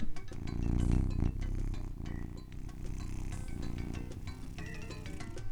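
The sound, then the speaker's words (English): A female cat purrs and yells in a steady, continuous low rumble for the whole stretch, slightly louder at the start, with a few faint higher clicks and squeaks scattered over it. “And she's just purring and yelling at me. Just listen to this.”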